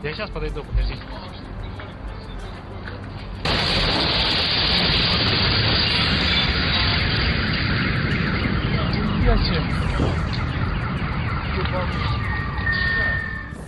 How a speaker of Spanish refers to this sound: Sí, imagínese que esto no es algo que están diciendo únicamente los habitantes de la zona, sino también que es algo que Vladimir Epifanov del Instituto de Investigación de Siberia asegura, y son explosiones que suenan de esta manera.